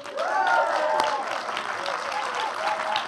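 A large crowd applauds steadily throughout as people are welcomed on stage, dense clapping mixed with scattered whoops and cheering voices, sustained at a fairly even, lively level for the whole few seconds.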